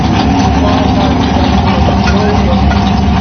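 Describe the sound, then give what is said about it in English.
A truck engine idles loudly right underneath, a steady, deep rumble with a throbbing low hum that fills the whole few seconds without letting up. “So a little hard to hear with Westbury C truck right underneath us right now.”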